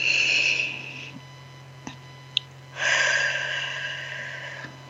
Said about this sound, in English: And as you're doing this breathing, I invite you to close your eyes.